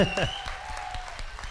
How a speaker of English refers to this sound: And not only that, yeah, it deserves a round of applause.